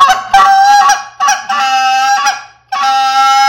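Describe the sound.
A goose call blown in an advanced comeback sequence with a spit note, as used out in the field: several quick, clipped honks, then longer drawn-out moaning honks with brief gaps. It is loud and reedy, with no voices.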